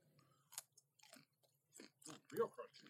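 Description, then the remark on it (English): A crunchy bite into a pickle spear, followed by several crisp crunching chews in an uneven rhythm, with faint mouth noises between them. “A spear with crunch like that.”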